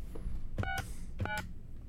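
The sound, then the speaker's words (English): Two quick bursts of telephone keypad tones as someone dials a number on a very cheap phone, each a pair of short electronic beeps with faint button clicks, over a low steady background hum. “I don't think it's working. I don't think you know how to dial.”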